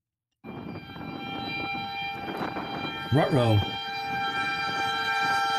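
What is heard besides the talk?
train passing with horn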